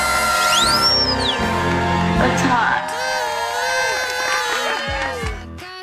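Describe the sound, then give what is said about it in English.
A short radio station jingle bursts in with layered cheering and whooping from a crowd, rising synth sweeps and bright tonal stabs, loud and busy for a few seconds before tapering off. “You hear that sounder?”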